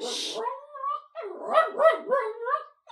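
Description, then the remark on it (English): A dog that had been in bed gets up and barks in a quick run of short, yelping, whiny barks, fairly loud and rising and falling in pitch, after a brief burst of hiss at the start. “He's just in bed, and then he got up and started barking.”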